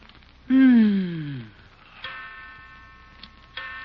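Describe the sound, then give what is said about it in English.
A clock ticks at 3 o'clock at night, a few sharp ticks spaced unevenly, following a loud, drawn-out falling tone at the start. “Yeah, I know it's 3 o'clock.”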